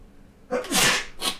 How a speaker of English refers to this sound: Sorry for all the sneezing, guys.